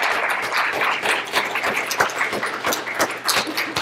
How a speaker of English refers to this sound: I think they deserve a quick round of applause for their sharing their expertise with us.